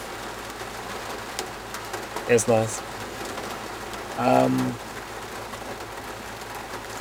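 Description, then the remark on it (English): Steady rain patters continuously in Wales, by a broken-down van, with a short burst of speech and a low, cooing bird call rising briefly above the downpour. “Raining.”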